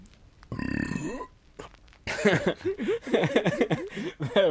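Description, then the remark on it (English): A single loud, drawn-out burp rumbles for about half a second, then after a short pause several people burst into bubbly laughter. “I can't burp”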